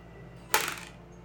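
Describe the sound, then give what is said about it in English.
A single sharp clatter of dice striking a hard table, followed by a brief rattling tumble that fades within a fraction of a second, with no talking over it; dice rolled for a strength saving throw in a tabletop role-playing game. “Where my dice go?”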